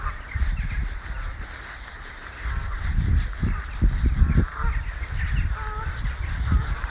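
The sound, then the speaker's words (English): A large flock of a few hundred crows caws continuously as they fly up into the trees on a reserve, many overlapping calls blending into a dense, noisy chorus over low rumbling wind, with no single bird standing out. “Watching a few hundred crows flying up into the trees.”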